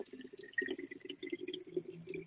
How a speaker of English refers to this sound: So, Doc, as I'm filling up this water bottle real quick